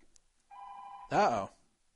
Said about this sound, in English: Someone trying to call my home phone during this show. Yes, I still have a home phone. Yes, I do. And I forgot to turn off the ringer.